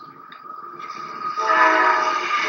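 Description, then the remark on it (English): A train rumbles past while its horn blows, a sustained blaring tone that grows louder and fuller midway through, with no voices present. “Damn, train shots.”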